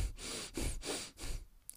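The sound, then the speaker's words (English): A person demonstrates rapid, shallow breathing: about four quick, airy in-and-out breaths in close succession, fairly soft, ending with a faint click. “As you put weight on one side and you breathe very rapid and shallow, you're telling your body and your brain that you are in danger”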